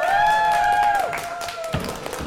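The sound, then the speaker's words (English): An audience at a cosplay competition claps steadily in a dense, crackling wash as judge Metal Haggis Cosplay is invited to the stage, with a held high whoop or whistle riding over it at first before fading out, the applause carrying on alone. “So I will invite Metal Haggis Cosplay to the stage. Round of applause, please.”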